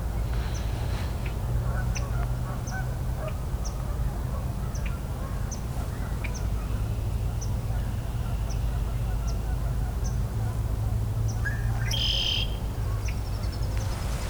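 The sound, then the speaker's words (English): Swamp sparrow calls: sharp, high chips repeating at a steady, unhurried pace over a low, constant rumble of background noise, with a brief burst of other bird sound near the end. “Also hearing what probably is swamp sparrow doing calls.”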